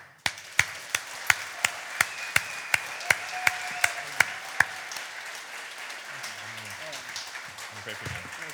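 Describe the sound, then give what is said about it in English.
A dozen or so sharp hand claps in a steady, even rhythm, fairly loud, stopping after about four and a half seconds and leaving a faint murmur of background noise and low voices. “Good clapping for you, man.”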